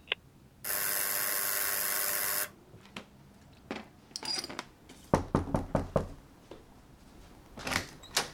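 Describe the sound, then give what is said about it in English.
A harsh, steady electric apartment door buzzer sounds for about two seconds as a visitor is buzzed in, followed by a series of sharp mechanical clicks and knocks as the entry door's lock releases and the door rattles open. “Buzzing you in now.”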